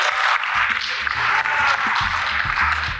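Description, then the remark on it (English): A crowd claps steadily and densely for a few seconds, with scattered cheers and shouts rising over the sustained applause, loud throughout, at the wrap-up of a Juniper event. “My boss is like 3 things over, so everybody clap, scream, do something.”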